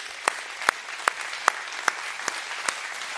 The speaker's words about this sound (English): I want to personally thank the praise team for the way they generously sacrificed their time to bring us into excellent worship. Can we applaud them this morning?